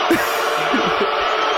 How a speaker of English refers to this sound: These people are rude. These booers over here.